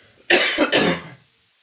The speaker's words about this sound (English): That was a cough.